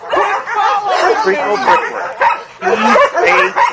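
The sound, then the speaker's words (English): Several dogs bark and yip excitedly, a busy overlapping stream of high-pitched yaps with whiny tones mixed in, loud and nearly continuous throughout. “These dogs love me too much.”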